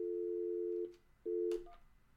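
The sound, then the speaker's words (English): A telephone speakerphone hums a steady dial tone that cuts out, returns briefly, then is broken by button clicks and a short beep, with no one talking. “You heard me dial it, right?”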